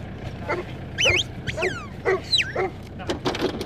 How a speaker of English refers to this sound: was getting his dogs out of their kennels.